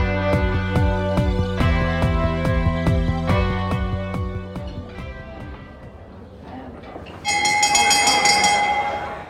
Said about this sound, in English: That's the dinner bell, which means it's time for our dinner party question.